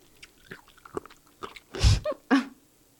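A loud, crunchy bite into a crisp pickled radish, followed by a few wet chewing crunches, with softer mouth sounds before it and no talking.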